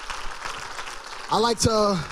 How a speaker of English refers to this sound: would you clap for them today and let them know how much we love them. Come on, we're so thankful for the anointing. And let me go ahead and say this. We're so thankful that they live what they preach. Clap again, church. Come on. Clap again.